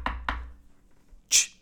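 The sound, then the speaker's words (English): Two quick, solid knocks on a door, followed after a short pause by a brighter, sharper click or thud, with no voices. “People don't even answer their doors anymore.”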